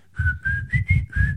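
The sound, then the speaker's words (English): A person whistles the Old Spice theme, a short, bright melody of five distinct notes in a bouncy rhythm, clear, with a faint breathy rumble beneath each note. “see Silver Surfer with his pecs bouncing up and down, whistling the Old Spice theme”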